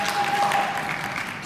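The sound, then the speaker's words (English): An audience at a church service claps in a steady, dense patter of many hands as a pastor is welcomed on stage, fairly even in loudness throughout, with a thin sustained tone faintly humming beneath it. “Oh, y'all suck at clapping.”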